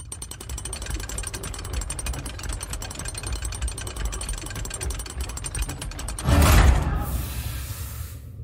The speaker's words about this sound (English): There should be a winding shaft somewhere on that control panel that manually opens those chambers. Try and find it and crank it.